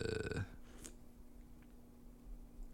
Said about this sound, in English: I feel like my Dr. Pepper sips are coming up on the mic. They are. I was just sipping myself.